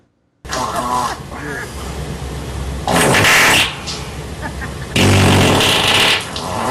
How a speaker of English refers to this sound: I like to know what Sparky did with all my goddamn fart sounds